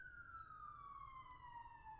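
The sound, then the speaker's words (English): An emergency vehicle siren wails outside in Los Angeles, one long steady tone sliding slowly downward in pitch as it passes, over a low rumble of street traffic. “I'm just going to let the sirens play for a second.”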